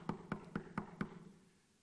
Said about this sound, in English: But he didn't want to leave, so he knocked again.